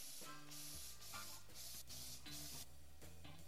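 Several bursts of hissing aerosol spray in quick succession, loud and close, over a steady backdrop of low droning tones that shift in pitch.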